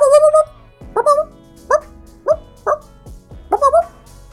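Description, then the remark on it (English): A person imitates a dog barking, giving a short string of voiced woofs in a quick, uneven rhythm, fairly loud, with a longer drawn-out yelp at the start. “what you could do is bark back. I'd be like, woo, woo, woo.”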